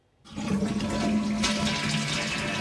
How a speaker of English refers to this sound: We all use them. Flushing toilets have been around a long time. The first patent for one was granted in 1775. They're pretty much everywhere.